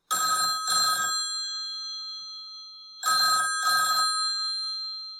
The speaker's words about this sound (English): the phone rang in the middle of the night.